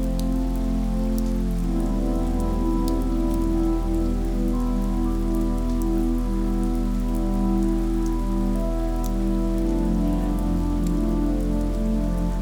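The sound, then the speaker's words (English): Steady summer rain from a thunderstorm pours down without pause over a mountain, a dense hiss dotted with sharp droplet ticks, constant throughout, with no voices or thunder standing out. “Summer thunderstorm.”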